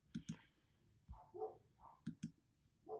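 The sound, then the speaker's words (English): Faint dog barking comes in short bursts, a few quick double barks mixed with softer yelps, spread across a quiet background with no one talking. “Man, you're probably hearing like a bunch of barking.”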